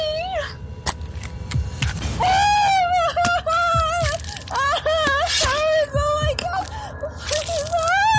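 A woman screams in loud, high-pitched, wavering cries that rise and fall over several seconds, close up, with sharp cracks and wet squelching sounds scattered underneath.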